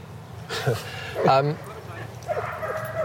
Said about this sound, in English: Got a dog situation happening. Looks really quiet anyway. Well, a lot of butt sniffing going down here.